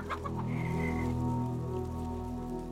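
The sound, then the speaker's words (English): Chickens cluck in a few quick bursts early on, then a longer drawn-out call, over a steady rain-like hiss and low hum. No voices are heard. “Now, please, detectives, I need to get back to the chickens.”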